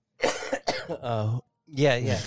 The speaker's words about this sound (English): You're having a COVID cough.